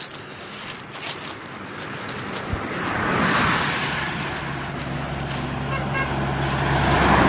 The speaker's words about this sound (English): Here's a little lumber truck. The lumber trucks have been zooming by on this road. It's a tiny, narrow little road. Oh, two cars now.